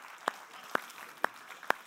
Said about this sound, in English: There's a lot of Praxis leaders that are in this room. They've dedicated their lives to being part of ministry. And I just want to give them, honestly, a round of applause for all that they do to make this happen.